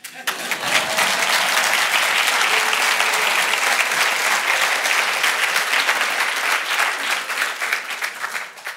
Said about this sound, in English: That was part one. You can probably clap.